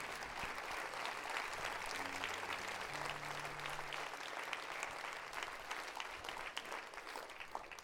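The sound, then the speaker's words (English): An audience claps for the Lord at a church service, dense overlapping applause filling the whole stretch at an even, fairly loud level, with a faint low hum underneath and no voices standing out. “Clap for the Lord, because the word of God tonight.”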